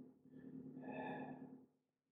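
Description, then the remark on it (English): Breathing heard through a telephone line with the receiver held to the ear: a single long, breathy exhale rises and fades over about two seconds, muffled and thin, with a steady low electrical hum underneath. “Here's some breathing.”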